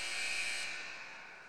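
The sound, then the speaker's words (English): A loud, sustained electronic buzzer blares steadily with a harsh, bright tone, signaling the end of an ice hockey game between the Scorpions and the Whalers, won 6-3 by the Scorpions, then fades slightly as it holds. “You're going to hear the buzzer in 4 seconds.”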